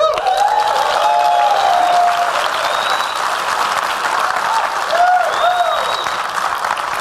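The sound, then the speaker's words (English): A large audience claps steadily throughout at an event celebrating a man's 100th birthday, a dense, sustained wash of applause with a few whistles and cheers rising above it, loud, with no speech. “This is a man who has spent his entire life innovating for a better world, and I think we need to give him one more round of applause for that.”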